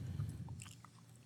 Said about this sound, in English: Do you ever like get satisfied when someone's like eating? And you hear them eating. There's some people who think it's like disgusting. Crunchy chips